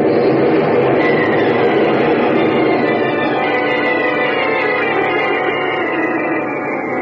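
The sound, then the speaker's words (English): A loud, continuous rumbling roar of the ground cracking open and collapsing into a chasm, dense and grinding, holding steady for about seven seconds before easing slightly at the end. No voices are heard. “The ground's cracking right under us!”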